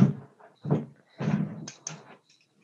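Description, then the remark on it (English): A door is opened with a series of low thumps and rattling knocks, then a couple of sharper clicks as the handle and latch move, without any voices. “opening the door.”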